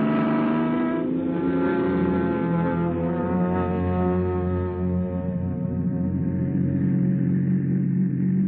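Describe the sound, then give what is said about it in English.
A car engine hums steadily as the vehicle drives along, a loud, continuous drone whose pitch sags slightly over several seconds, with no voices. “Come on, car, let's go.”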